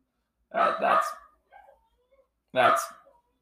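A dog barks loudly: two quick barks in a row, a soft whine, then one more sharp bark after a short pause.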